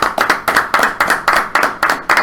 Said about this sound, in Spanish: Gracias, Undertaker. Thank you, Taker. Un aplauso.